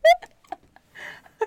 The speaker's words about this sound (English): I knew I had a burp coming up. I wanted to get it out before we started. Well, you did. Okay. Got it out. Good job.